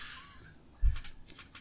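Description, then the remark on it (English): A short burst of computer keyboard typing while looking something up: a dull thump followed by four or so crisp, quiet key clicks in an uneven rhythm, with no talking. “Let me look it up. Time out. I had to type.”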